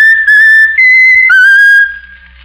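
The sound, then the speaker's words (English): A bird named Raffles whistles a short tune, loud, with clear sustained notes that step up and down in pitch before fading out. No talking. “Now, Raffles, that's a very bright bird. Whistle your favorite tune.”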